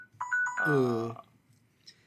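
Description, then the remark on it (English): A new S6 smartphone's ringtone chimes: a few quick electronic beeps, then a fuller, sustained musical tone that cuts off after about a second, leaving quiet background noise. “I don't know how to turn it off. This is a new phone.”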